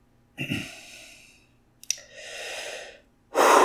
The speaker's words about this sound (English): Breathing, my dudes, breathing.